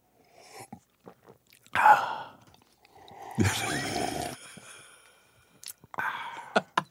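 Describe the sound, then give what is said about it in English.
A person imitates loudly sipping coffee on the phone with their mouth: a few soft clicks, a sharp breathy suck, then a long noisy airy slurp, ending with quick lip smacks. No talking. “We love the sipping coffee loudly, you know, on the phone. Right. You know, this sound.”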